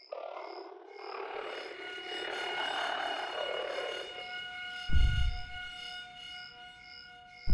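A spaceship oxygen alarm: steady electronic tones with a high, regularly pulsing beep over a low drone, interrupted midway by a heavy low thud.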